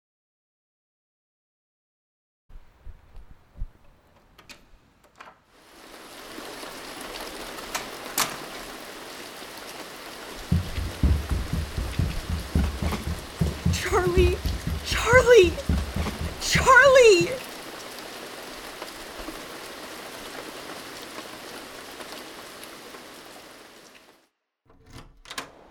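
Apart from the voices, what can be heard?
pouring rain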